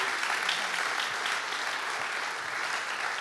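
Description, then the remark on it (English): A crowd claps steadily for a few seconds, a dense wash of many hands applauding at an even volume with no pauses, giving one more round of applause to welcome newcomers. “Okay, familiar faces, but let's give one more round of applause.”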